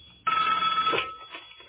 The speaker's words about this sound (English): The demon did appear in the garage eventually, but what's really creepy is when the demon did appear, the sound of a telephone rang, okay, just like, you know, just like this, a sound of a telephone, like this.